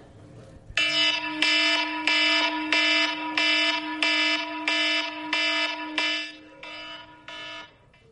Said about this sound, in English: Isn't that the worst? I loathe my alarm clock. It has a snooze feature. And I know that it's going to ring again, snooze, again, snooze, again. The alarm is callous, but its job is to wake us up from our slumber.